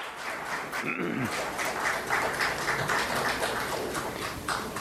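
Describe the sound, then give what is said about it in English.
A crowd in the Rutgers Student Center multipurpose room applauds steadily as students silently leave the room, a dense wash of clapping holding at an even, moderate loudness for the whole few seconds, with a faint murmur of voices underneath. “have also gotten up, and they're holding what look like red Rutgers t-shirts up in the air, and they all silently leave the room to some applause from the crowd.”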